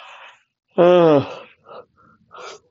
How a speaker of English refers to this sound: Yawning.